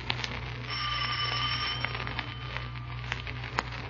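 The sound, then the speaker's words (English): A door bell at a dealer's house rings with a bright, metallic, sustained tone for a second or two, over a steady low hum and scattered faint clicks, with no voices. “Ring the bell.”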